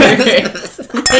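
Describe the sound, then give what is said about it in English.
Glasses clink together in a toast, a few bright ringing taps, with a louder clink near the end and people's voices murmuring underneath. “Cheers.”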